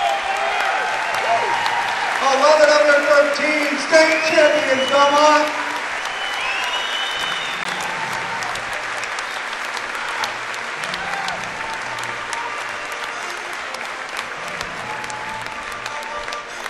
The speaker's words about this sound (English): Please stand and give these champions one more round of applause.